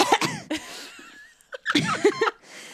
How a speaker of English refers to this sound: Oh, oof, or you coughed. You coughed as I was giving it to you.